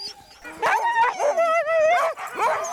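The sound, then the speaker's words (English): A pack of excited sled dogs barks and yips in an overlapping, continuous chorus, with high-pitched whining howls rising and falling, loud, as they get fired up while their harnesses are being readied. “You can see in the dogs now, they're starting to get fired up a little bit.”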